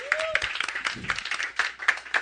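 A short burst of scattered clapping from a few people, uneven and close, lasting a couple of seconds with no voices over it.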